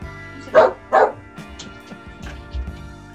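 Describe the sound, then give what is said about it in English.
Two sharp, loud barks from a dog named Gizmo in quick succession near the start, recorded live, followed by quieter scattered sounds and a low thump, with no talking over it. “I just had to throw in that sound effect. That's a live sound effect.”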